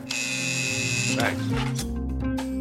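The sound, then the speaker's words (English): A harsh, rasping electric door entry buzzer, pushed by a guard to let people in, sounds for about a second, then cuts off, leaving a steady low hum and murmuring voices underneath. “Push the goddamn buzzer, will you?”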